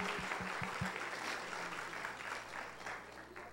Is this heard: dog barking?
no